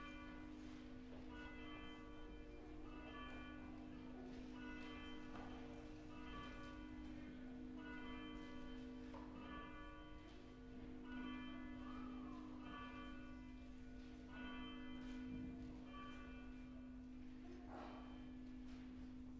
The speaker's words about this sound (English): Please stand. The bells will call us to worship.